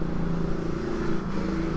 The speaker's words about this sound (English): Another motorcycle, and that's why you guys are going to hate listening to this thing, because the sound quality is going to be crap.